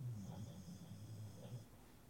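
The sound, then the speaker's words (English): A dog snoring softly, low rattling breaths rumbling steadily with no one talking. Faint and calm throughout. “It's very calming, actually, listening to him snore.”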